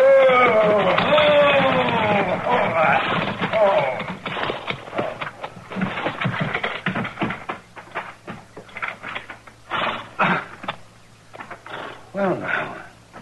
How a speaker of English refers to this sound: There's a wagon pulling into the yard. Why, that's the same... Same what? He's a peddler. Tinware and stuff. He come through here this morning heading west.